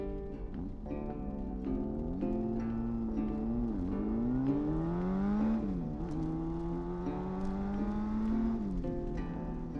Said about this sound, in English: They're in a car. They're driving to Cabo San Lucas.